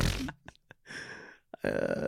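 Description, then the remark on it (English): A person vocally imitates a seal fart: a few short sputtering bursts, then longer raspy, buzzing blasts, loud with brief gaps between them. “Can you imagine a seal just ripping your butt next to you? Just like...”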